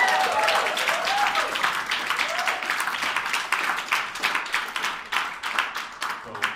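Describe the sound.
A crowd breaks into steady applause, dense clapping filling the whole stretch before thinning into more separate, distinct claps near the end, with a few faint voices mixed in early on.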